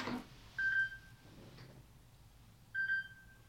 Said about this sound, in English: Ah, I thought I had turned my phone off. We'll edit this part out.